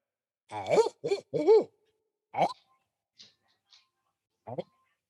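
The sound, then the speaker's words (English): A person imitates a barred owl, voicing a quick series of rising, hooting calls followed by a couple of shorter hoots, with faint breathy sounds in the pauses. “All right, here we go. Barred owl.”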